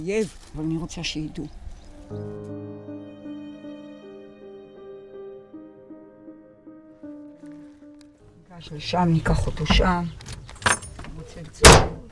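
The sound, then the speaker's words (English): Brief talking gives way to a steady droning tone, then rustling, keys jangling and truck doors clunking shut as people climb into a truck, ending with a sharp, loud slam. “We're dripping with sweat, so we climb into Orna's truck and head for air conditioning.”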